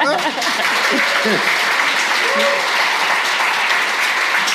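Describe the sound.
A crowd claps steadily in a dense, continuous wash of applause, with a few brief voices and whoops rising above it throughout.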